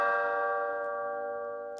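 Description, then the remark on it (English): A doorbell chime rings once, a bright bell-like tone that sustains and slowly fades over under two seconds, with no one talking. “Nacho, could you please answer the door for me?”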